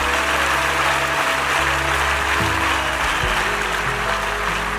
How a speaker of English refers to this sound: Could we do this? Could we clap our hands for these guys for creating this that we get to be a part of?